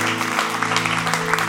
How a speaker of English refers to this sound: Let's give God one more big clap tonight.